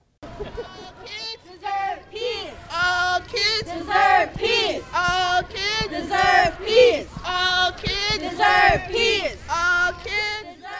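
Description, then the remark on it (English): A crowd at an outdoor rally demanding a ceasefire for Palestine chants and shouts together in loud, rhythmic bursts, many voices rising and falling in unison with steady energy throughout; rain may be heard. “Next, you'll listen to some sounds and voices from the event.”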